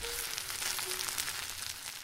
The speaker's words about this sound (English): Bibimbap literally means mixed rice, and though there is no particular recipe, it is a sizzling rice bowl that is topped with colorful vegetable garnishes and a fried egg.